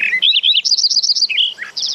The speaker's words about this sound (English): In the golden sunlight of an October morning, a Lincoln sparrow sings energetically from a hedgerow.